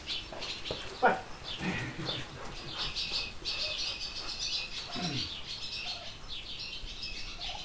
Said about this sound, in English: Barn swallows, house sparrows, rock pigeons, each of these species might easily be found by visiting a barn during breeding season. It's early July and I've set up a field recorder in a barn at Wayne Terryberry's goat farm in Carluke, Ontario.